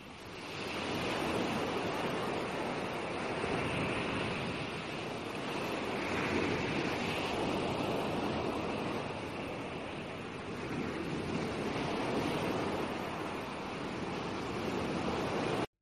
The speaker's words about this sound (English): It's a place where, you know, I could calm my soul, watch the waves, have the sound of the ocean echo through my head as I step on the sand. It's a soothing place for me.